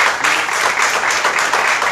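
A crowd applauds steadily, many hands clapping at once in a dense, continuous patter with no pauses and no voices standing out.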